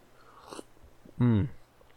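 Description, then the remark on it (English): A quick slurping sip from a mug of a drink sweetened with honey and glycine, with small wet mouth sounds, followed by a short voiced 'mmm' of satisfaction that falls in pitch. “Anyways, I'm going to take a sip.”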